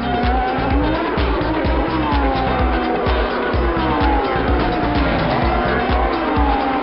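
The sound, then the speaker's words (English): IndyCar Series race car engines roar continuously, with rising and falling whines and bursts of tire squeal layered over a dense, loud mechanical rumble. “We look at the Indy cars with Richard Crail today on Inside Motorsport.”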